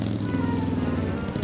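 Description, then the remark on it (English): A Harley WLI motorcycle engine drones steadily while riding south through a city in warm Santa Ana winds, a loud, continuous low rumble with a buzzing hum that holds an even pitch throughout, with no voices. “rode his beloved Harley WLI motorcycle south through the city, enjoying the warm Santa Ana winds in his face.”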